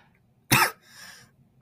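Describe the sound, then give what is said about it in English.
A sharp, loud cough bursts out, followed by a raspy wheezing breath, then another cough starts abruptly at the end; the coughing comes from dry air and chain smoking cigarettes. “You're very coffee, man. It's the dry air.”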